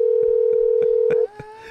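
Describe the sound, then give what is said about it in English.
A steady, loud phone dial tone after a call is hung up hums for about a second before cutting off, with faint regular ticking beneath it and a quieter tone lingering afterward. No one speaks. “He just booped you.”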